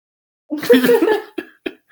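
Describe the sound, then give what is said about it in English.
A raspy, strained cough with a rough voiced edge after smoking cannabis, followed by two short, sharp coughs. It is fairly loud, with no talking. “Your Straw Nana cough is real killer.”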